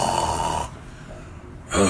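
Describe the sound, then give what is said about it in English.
Someone imitates a loud, harsh, aggressive snore with their voice: a rough, rasping inhale that cuts off, a brief lull, then another grating snort starting at the end. Forceful. “Like somebody that sound like they could break a chandelier with their snore.”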